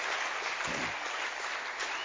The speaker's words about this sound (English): And thanks, too, for the musicians. I think we should just give a round of applause for them.